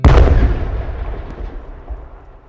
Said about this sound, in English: A massive explosion sends smoke and shattered glass from all of the windows, and even shattered the windows of the surrounding storefronts and houses. But still, the Free State Hotel was still standing.